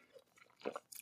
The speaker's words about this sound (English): Sip of coffee.